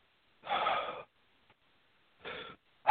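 A breathy inhale lasting over half a second, then a pause and a shorter airy breath, with another breath starting at the end, as calm breathing is demonstrated. The breaths sound slow and deliberate, with no talking.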